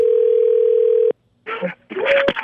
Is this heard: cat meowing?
no